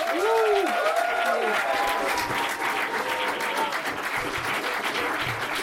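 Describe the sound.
A crowd claps warmly and steadily for several seconds, a dense crackle of many hands, with a few voices calling out over it at the start.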